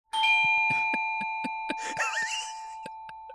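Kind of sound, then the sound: household object, doorbell ringing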